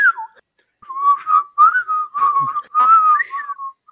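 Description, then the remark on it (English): Someone whistles a bouncy cartoon theme tune, a series of clear sustained notes with short gaps, a bit breathy and uneven, with no talking. “It would help if I was better at whistling. But that's all it is, just a whistle.”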